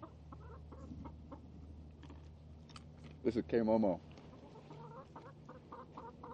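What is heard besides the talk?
chicken clucking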